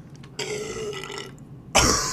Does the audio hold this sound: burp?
yes